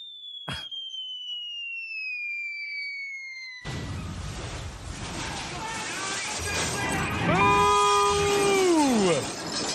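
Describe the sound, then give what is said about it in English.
A falling whistle-like tone gives way to a loud, noisy car crash sound effect, used to signal a bad answer in a game, with screeching tones sliding downward near the end before it cuts off. “Yeah, the car crash is the bad.”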